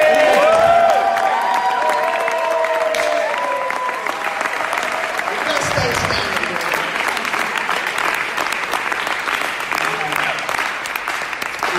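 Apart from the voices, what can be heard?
audience applause and cheering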